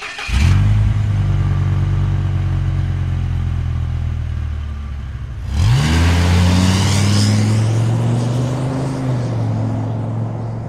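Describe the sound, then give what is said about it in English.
A loud truck engine rumbles steadily, then revs up sharply partway through with rising pitch as the vehicle accelerates away, the heavy drone continuing to the end. “Get in the truck and we're heading on down to the trailer park.”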